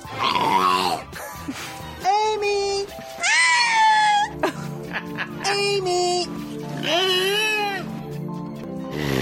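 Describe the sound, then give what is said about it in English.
A killer whale makes a string of loud, squealing tonal calls that rise and fall, several of them shaped like an attempt to copy spoken human words. “I found some new footage for the killer whales.”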